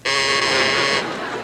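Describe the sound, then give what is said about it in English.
A game show answer bell buzzer used by quiz contestants blares once, a harsh, steady electronic buzz with dense stacked harmonics lasting about a second, then tailing off into a quieter murmur. “Use your bells. Please, use your bells.”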